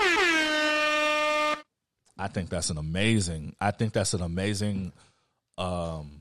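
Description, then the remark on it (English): A single loud, brassy air horn blast holds steady for about a second and a half, cuts off abruptly, and then people start talking after a short pause. “But either way, hit those people with the air horns.”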